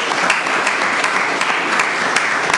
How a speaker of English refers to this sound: Welcome, everybody. How y'all doing today? Can I get a round of applause for our senior round of guests here?